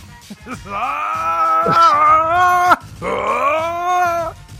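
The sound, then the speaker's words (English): A person imitates anime power-up screaming, as of Goku and Cell powering up: two long, loud, strained yells, the first held for about two seconds, then a short break before a second that climbs steadily in pitch. “And then while everyone's talking about what's going on, Goku and Cell or whoever are screaming.”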